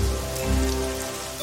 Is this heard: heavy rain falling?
yes